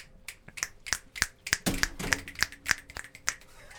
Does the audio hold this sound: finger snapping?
yes